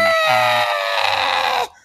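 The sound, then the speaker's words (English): A squeezed inflatable rubber chicken lets out one long, loud, reedy squeal, harsh and buzzing with a steady pitch, lasting about a second and a half before cutting off abruptly. “Do you remember those inflatable rubber chickens that people? There was like the meme where you'd like get a shopping trolley full of them and you'd squeeze them and then let them go and run away and they were going.”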